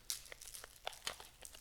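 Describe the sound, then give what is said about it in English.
Crackly crinkling of a candy wrapper being unwrapped from a candy taken out of a box, with a quick series of irregular rustling bursts and sharp snaps and no voices. “So you have a wrapping on the box that you open to unwrap a candy”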